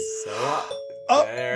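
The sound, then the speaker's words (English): A bright doorbell-style chime, used as the cue for places, rings out in a few clear, sustained tones, fairly loud, with a faint voice murmuring underneath. “That's our chime for places.”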